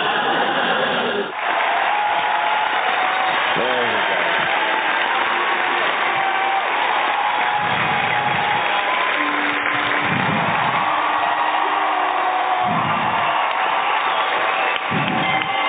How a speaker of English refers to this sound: Okay, there we go. You got some applause.